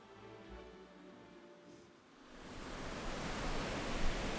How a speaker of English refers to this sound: This is the only ocean there is. Thank you very much. This is the Oregon Ocean.